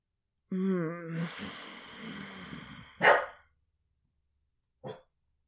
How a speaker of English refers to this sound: It growled a little bit and it set the dog off barking. Yeah, he was here for the whole thing. He didn't like it either.